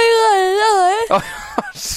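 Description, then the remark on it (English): A drawn-out yawn on a radio broadcast, with a wavering, mid-pitched moaning tone held for about a second, trailing off into breathy exhales and a few short vocal fragments. “The worst thing is so many people right now are driving home and now yawning. You did that.”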